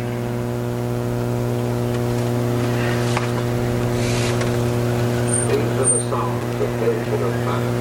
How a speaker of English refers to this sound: getting there means getting on your bike, or in this case, getting caught in traffic. It is Kill Radio. Trying to get to the, that's right, bike event in Riverside. This might be the only time you see us with our bikes on the back of the car.